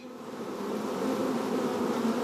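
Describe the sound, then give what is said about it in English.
A steady, dense hum of many honeybees buzzing around a hive, a continuous droning swarm that swells slightly in loudness and holds without pause. “I have a hive at home and it's just so rewarding seeing the bees fly in and out and seeing all the pollen they come back with and just observing how they all work together as a community.”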